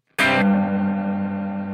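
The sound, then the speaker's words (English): A single instrument chord is struck sharply, then rings on through a lush reverb effect with its octave setting off, keeping the notes sustained and shimmering, with no pitch-shifted octave layer added. No one speaks. “So this is with the octave off. Can you hear this at all?”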